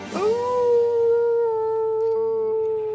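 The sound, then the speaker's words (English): A person imitates a dog, barking at Bartholomew, with one loud, drawn-out howling bark that rises at the start and holds steady for a few seconds. No other voices. “I bark at Bartholomew. He barks back.”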